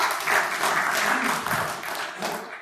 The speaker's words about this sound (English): I just want to take this opportunity to appreciate every woman in this place. Please, men and everybody, can we just give them a high clap?